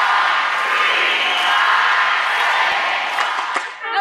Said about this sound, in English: Team was performing and the crowd support was very helpful. They had our back and they were counting the whole routine.